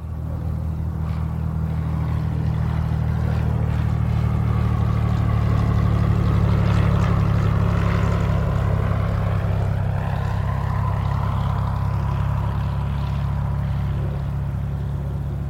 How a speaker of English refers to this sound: The candidate's small chartered airplane taxis into a tiny terminal building in Spencer, Iowa.